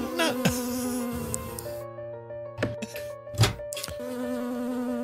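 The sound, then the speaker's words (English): A bee buzzes loudly in a video being played, a continuous droning hum that rises and falls in pitch, broken by a few brief thumps. “Not a bee.”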